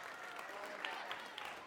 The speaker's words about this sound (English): Hang on. No, don't. Please do not applaud that. That does not deserve your applause.